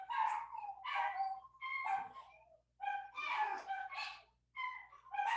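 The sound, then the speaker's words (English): Dogs bark because someone came to the front door: loud, rapid, overlapping bursts, sharp and fairly high-pitched with yippy edges, continuing for several seconds with only brief pauses. No one speaks. “I'm guessing somebody came to the front door is what it's now looking like. They hate when people come to the front door.”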